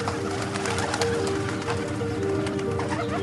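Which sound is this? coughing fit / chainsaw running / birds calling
birds calling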